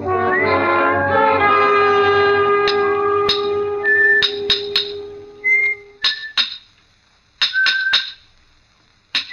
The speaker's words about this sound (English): From the yard itself came a cheery whistle, the noise of hammer blows, and the cold sound of steel meeting stone.